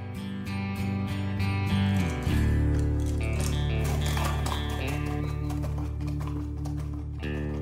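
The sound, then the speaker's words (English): Horse hooves clip-clop in a quick, steady rhythm, clearest in the first couple of seconds, alongside a continuous sustained tonal background. “Without you, I'm just another girl on a horse.”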